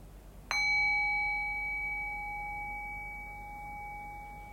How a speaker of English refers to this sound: And so in the next moment or two, I'll ring the sound of the bell again. And once again, allowing the fade of the bell to guide your awareness into silence.